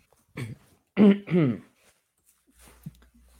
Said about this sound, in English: as I clear my throat.